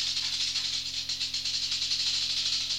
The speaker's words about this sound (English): The rattlesnake is shaking its rattle.